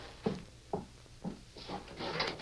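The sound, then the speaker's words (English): A door being opened: three soft wooden clunks at the latch, then a longer rattling scrape as it swings, fairly quiet, with no voices. “Stay where you are. Open the door”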